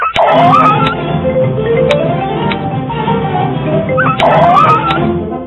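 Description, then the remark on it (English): A dog being tortured by a man on a front porch yelps and screams in distress, loud, with two sharp rising wails near the start and end and constant pained whimpering in between. “I mean, that dog was just yelling and screaming.”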